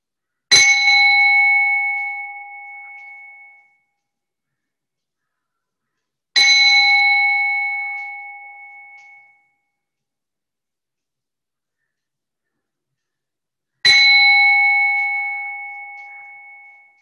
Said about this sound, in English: We will again invite the sound of the bell now. Following the sound of the bell till it fades out.